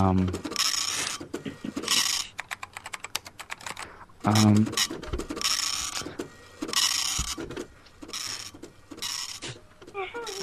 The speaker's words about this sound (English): One sec, I have to fire up the dot matrix printer. One second.